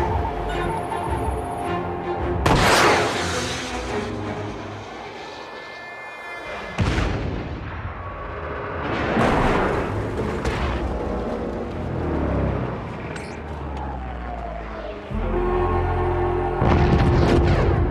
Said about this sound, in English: Fett activates his helmet targeting device, the little antenna thing. It flips down. He aims at the lower of the two transport, fires the rocket, and it hits the transport that's higher in altitude, which crashes into the other, taking out both.